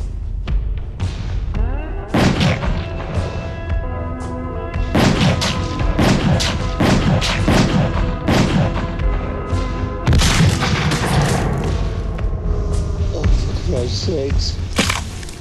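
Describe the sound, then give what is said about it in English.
A sustained burst of gunfire in a David Lynch film scene where police shoot the character Bobby Peru dead: many sharp booming shots fired in rapid, uneven volleys over about fifteen seconds, loud, with a tonal background that sounds like a movie score. “Like he knew he was shot to death and he just wanted to make a bang, or was it unintentional?”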